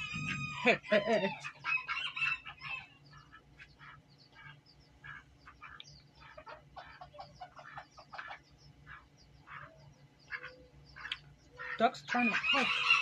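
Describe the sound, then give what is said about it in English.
Ducks quack and chatter while trying to eat a piece of food, in a steady run of short, repeated calls, with louder, busier bursts of calling at the start and again near the end. “Ducks trying to eat a piece of... No, ducks can't eat that.”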